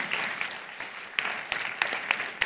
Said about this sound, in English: Clap your hands for the promise of Jesus.